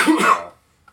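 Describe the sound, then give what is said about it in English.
A single harsh cough lasting about half a second, followed by near silence and a faint brief tick. “How's that cough going”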